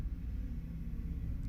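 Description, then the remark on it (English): A passing motorcycle's engine gives a low, steady growl, a fairly quiet rumble that holds throughout without pausing. No voices are heard. “The growling, greedy consumption of that motorcycle?”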